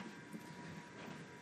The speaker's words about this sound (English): The fucking furnace. Hopefully that shutting that door mutes that enough.